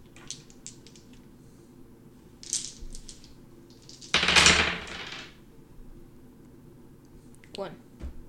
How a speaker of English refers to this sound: So roll 9 dice again.